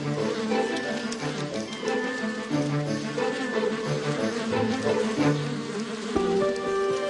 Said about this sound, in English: This returning bee has just found a new source of nectar and is going to tell others in the hive about it.